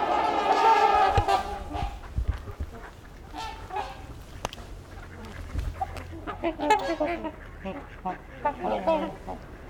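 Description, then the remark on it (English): Ducks quack repeatedly from a noisy flock, their harsh calls overlapping and loudest at the start, then continuing in scattered bursts. “You can hear some quacking too, if not worse.”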